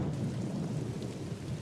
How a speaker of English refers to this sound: First off, I just want that rain noise just playing ambiently through the rest of this episode because it's so good.